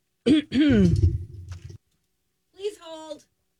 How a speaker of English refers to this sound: She's taking a sip of water, ladies and gentlemen. She seems to be fighting off a cough.